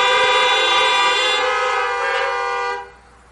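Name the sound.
car horns honking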